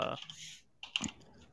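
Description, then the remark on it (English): Quiet typing on a computer keyboard: a handful of irregular, clicky keystrokes with brief pauses between bursts and a soft background hush. “Or are you typing things? I'm typing.”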